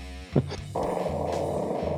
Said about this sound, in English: Did my mic pick that up? Alright. That just cut loose a mighty fart.